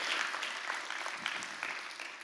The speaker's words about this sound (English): And yeah, you can cheer for them. Yeah, it's all right.